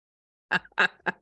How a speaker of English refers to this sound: See the cat just burst in through the door in the background.